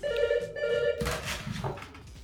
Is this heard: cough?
no